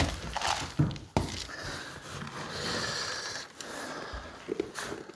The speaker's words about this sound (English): All right, here we go. You guys can hear the feed going down on the bench. Here we go.